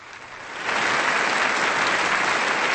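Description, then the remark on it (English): A crowd breaks into applause to show they got a quiz answer right, the clapping swelling sharply after a brief quieter start and then holding as a dense, steady roar of many hands with no voices. “The correct answer is, clap your hands if you got it, white.”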